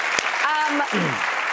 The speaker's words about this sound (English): Yeah, clap for each other. Absolutely. We're all very encouraging.